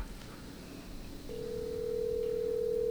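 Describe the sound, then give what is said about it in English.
After a moment of low background hum, a steady electronic telephone tone starts and holds unbroken to the end, clear and fairly loud, like a line ringing through a handset, as a call is placed to a friend. “Let's call our buddy.”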